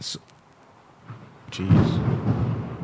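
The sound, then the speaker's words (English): Thunder rolls in after a quiet start, a low, heavy rumble that swells and holds loudly through the second half, preceded by a brief hiss at the opening. “it is going to start pouring.”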